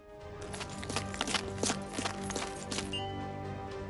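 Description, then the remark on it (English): A steady series of video game footsteps, an enemy moving to a different position, about eight evenly spaced thuds over a sustained musical background at moderate loudness, with no one talking. “Pay attention to his footsteps to find the direction in which he will move.”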